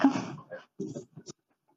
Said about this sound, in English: Sorry, I just want, this is Lily barking at the back.